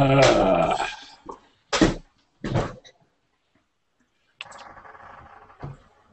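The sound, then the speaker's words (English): A voice croaks a traditional Boggart greeting in the rough, guttural made-up Boggart language: a long rasping burst, two short harsh grunts, a pause, then a lower buzzing, gravelly stretch that ends in another grunt. “Of … croaking at something is just funny.”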